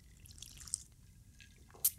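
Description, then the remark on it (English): A quiet, low murmur with a few faint wet clicks, then one short, sharp slurp of someone sipping a drink in front of the microphone near the end. No one speaks. “I don't want to hear you sip every time I edit one of these.”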